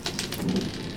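Dice, including a D20, rattle and clatter across a hard tabletop in a quick burst of small tapping impacts, rolled for a perception check in a tabletop role-playing game, with no voices.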